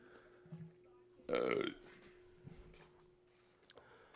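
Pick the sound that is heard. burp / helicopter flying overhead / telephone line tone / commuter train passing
burp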